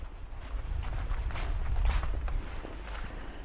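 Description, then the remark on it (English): Footsteps trudging through dry leaves outdoors in cold weather with a smattering of snow, a steady series of crunchy, rustling steps about every half second, over a low rumbling wind noise; no one speaks. “Well, you can hear me trudging through leaves, of course.”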